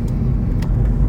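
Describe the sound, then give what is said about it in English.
A car rumbles along the road, its low engine and tyre noise holding steady and loud for about a second, with a couple of faint ticks on top and no voices. “Wow, there's not many cars out here today.”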